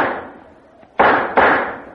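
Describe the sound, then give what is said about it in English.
Sharp rifle shots at a shooting gallery: one crack with a long ringing tail, then two more loud reports in quick succession, each fading slowly. No voices. “All right, mister. Take your shot.”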